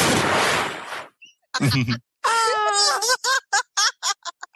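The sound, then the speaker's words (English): A loud rush of heavy breath is followed by strained, voiced groans and a run of short, choppy gasping bursts, like someone laboring and struggling. “Somebody's breathing. It is really realistic that they are struggling”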